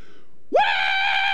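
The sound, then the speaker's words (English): A baby lets out a loud, sustained scream that rises sharply and then holds steady, piercing, with no talking over it. “Like hungry, happy, sad, tired. It doesn't matter. It's just screaming.”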